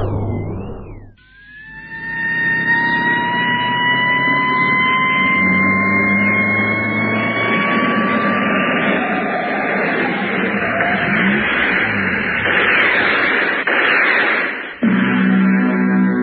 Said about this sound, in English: Squad cars.